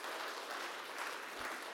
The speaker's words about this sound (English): Give her a big round of applause. That was not a big round of applause.